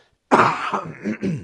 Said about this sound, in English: I apologize. I've got a bit of a cold, so sometimes I have to clear my throat.